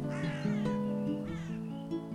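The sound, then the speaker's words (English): A couple of harsh, drawn-out crow caws ring out, rising and falling in pitch, with steady tonal music playing underneath. “Oh, no! A crow!”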